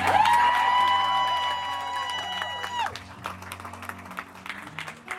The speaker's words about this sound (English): That's not enough claps.